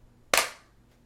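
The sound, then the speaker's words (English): A single sharp hand clap, made to synchronize a recording, cracks out of near silence, loud and bright, then rings off quickly in a short decaying tail. No one speaks. “But yeah, so we never did a synchronicity clap.”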